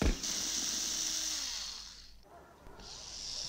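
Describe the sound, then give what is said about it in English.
A small scooter engine buzzes with a harsh, high-pitched whine, dips briefly in intensity partway through, then revs back up to its steady drone. No one speaks. “Look like a scooter, boss.”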